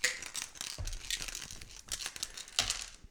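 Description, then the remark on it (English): Dice are rolled in a game, rattling and clattering across a hard surface in a quick run of sharp clicks and tumbling knocks with a few louder impacts spread through the roll; the red die lands on 2. “And the red dice is 2.”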